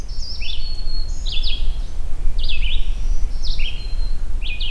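A distant magnolia warbler sings short, sweet, slurred phrases, repeated several times in quick succession over a steady low rumble of background noise, with no voices.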